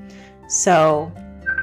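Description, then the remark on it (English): A phone rings with an incoming call, a short, bright electronic tone that rises in a single burst, fades, and is followed by a faint sustained beep. “Sorry, I was just getting a phone call.”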